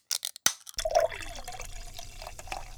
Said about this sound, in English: So this is an IPA poured from a can that has not been refrigerated. Ugh, truly unappetizing.